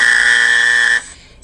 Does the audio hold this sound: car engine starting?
no